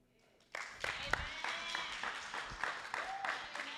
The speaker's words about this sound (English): Because you usually, when you say joy, they might clap. When you get the money, everybody clap.